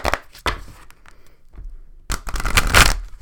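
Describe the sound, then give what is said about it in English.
Cards from a deck being shuffled, a quick rustling riffle, then a pause and a louder, denser burst of flicking and slapping cards toward the end. “I'm gonna shuffle one more time, okay?”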